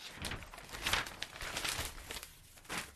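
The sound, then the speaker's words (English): Dry rustling and crinkling of a newspaper, with a few sharper crackly bursts as the sheets are handled and the paper is folded closed, lasting a few seconds with no voices. “The paper is closed, and that's the end of the news.”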